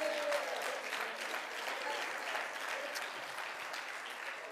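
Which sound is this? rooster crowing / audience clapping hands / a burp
audience clapping hands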